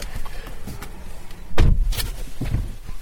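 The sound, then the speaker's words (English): Shuffling and rustling as someone climbs into the seat of a silver and black sport-spec Mercedes, followed by a solid, heavy door thud shutting, then muffled movement in the quiet cabin. “Okay, getting in the thing, here we go.”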